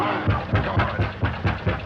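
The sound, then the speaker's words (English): Seven or so heavy knocks on a door in a steady, fairly quick rhythm, each a dull, low thud, loud against a faint background hiss with no voices. “Knock again, louder.”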